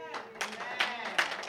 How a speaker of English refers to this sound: Amen. Thank you. The Christians are clapping. The unbelievers are looking at me. The believers are putting their hands together.